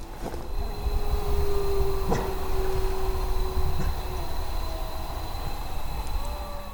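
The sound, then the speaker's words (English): Wolves howling at night, heard from outside a cook tent: a long, steady, mid-pitched howl holds for several seconds, then a fainter, higher howl bends upward, both thin over a constant low rumbling hiss. No one speaks. “We got wolves.”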